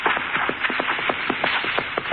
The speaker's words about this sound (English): Hey, a horse. Ahead of me somewhere.